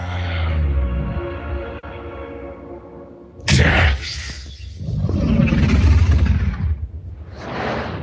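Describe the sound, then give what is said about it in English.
A sustained, harmonic tonal drone gives way to a sudden roaring burst of dragon fire, followed by loud rushing whooshes that surge and ebb before fading out. “It's almost like blowing out a candle. It's like, whoosh”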